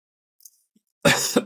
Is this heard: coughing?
yes